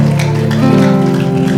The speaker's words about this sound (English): Then why don't you put your hands together for Jesus? Oh, are you clapping? Clap with enthusiasm. Clap with excitement.